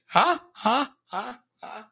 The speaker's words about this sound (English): Now, I won't breathe into the microphone. I'll just do the show without breathing. I mean, I gotta breathe. I don't know how that would work.